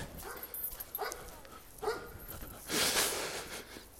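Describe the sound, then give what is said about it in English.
A dog named Ziggy whimpers and gives short barks, a few brief yelps spaced about a second apart, followed by a louder, breathier burst. Fairly quiet, with no talking. “Why don't you let that fucking dog play?”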